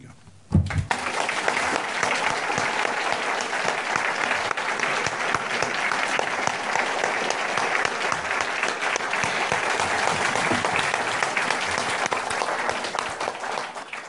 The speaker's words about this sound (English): Thank you so much for such a wonderful session. And can we finish off with a last round of applause for Michael Morpurgo?